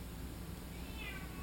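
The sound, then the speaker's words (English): A single drawn-out cat meow rises and falls near the end, fairly quiet, over a steady low background hum with no talking. “my cat is ruining this take.”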